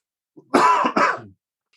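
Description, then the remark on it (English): A loud double cough, two rough bursts in quick succession with a little throaty rasp, then silence. “I didn't press mute then when I coughed when I tried to.”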